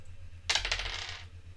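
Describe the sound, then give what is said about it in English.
Dice clatter across a hard surface in a short, bright rattle of quick clicks lasting under a second, fairly loud over a faint low hum; the roll comes up a six, the fourth six in a row. “Okay, these dice are loaded, because this is the 4th 6 in a row that we've received.”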